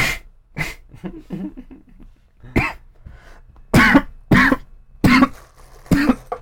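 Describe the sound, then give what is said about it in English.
A man's coughing fit: a string of harsh coughs, sporadic at first and then coming in rapid bursts roughly every half second, loud and raspy with breathy gasps between. “It can't with his coughing spurts, this one.”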